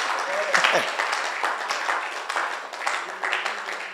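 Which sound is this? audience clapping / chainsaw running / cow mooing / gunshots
audience clapping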